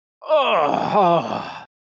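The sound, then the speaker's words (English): A voice imitates a big, drawn-out yawn and stretch: one loud groaning moan lasting about a second and a half, sliding down in pitch, rising briefly, then trailing off. “This small shape appears to stand up from the fabric, and then it sort of like loosens down, and you just see two stubby arms push out from the side, and you hear this big yawn and like a stretch, like, oh.”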